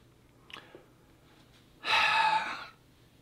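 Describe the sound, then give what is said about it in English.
A yawn from an exhausted person: a single breathy, drawn-out exhalation, fairly loud, rising and fading over under a second after a quiet intake of breath, with no talking. “I'm not yawning because I'm bored. I'm yawning because I'm exhausted.”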